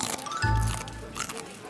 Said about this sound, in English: Sorry, it's just taking me a while to chew on this broccoli kale bitter bite.